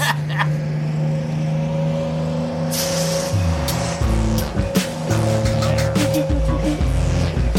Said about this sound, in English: Oh, God, the bus is breaking down in the middle of the desert